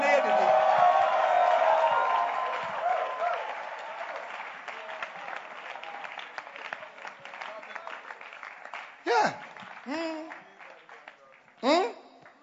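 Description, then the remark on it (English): A church audience, told to clap their hands for the Lord and give the Lord a shout, bursts into loud applause and shouting, the clapping thinning out over several seconds, with a few high whoops and cries rising above it near the end. “In the name of Jesus, clap your hands for the Lord and give the Lord a shout.”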